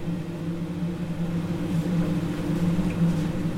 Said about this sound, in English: Kettle's still boiling.